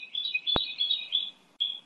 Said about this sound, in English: I guess what's the bird saying? It's calling out to Winston.